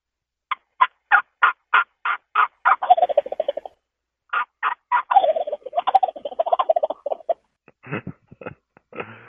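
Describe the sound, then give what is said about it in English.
A loud imitation of a turkey hen yelp series: a steady series of about eight evenly spaced yelps, cut off by rapid rattling gobbles and a few final sharp calls, with no talking. “So I'll do a hen yelp series. I'll cut it off with a gobble.”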